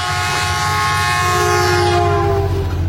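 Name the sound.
train with horn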